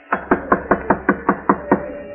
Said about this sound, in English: Knock, George. Knock. Go ahead.